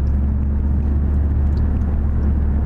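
Steady, droning road rumble from inside a moving car on the way to a car museum, a deep continuous hum with faint hiss layered above, constant in loudness throughout with no talking.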